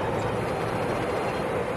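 A Berlin subway train, taken late one evening to the Kudamm, rumbles steadily along the rails, a loud, continuous roar of wheels and motor noise with no voices, unbroken for the whole moment.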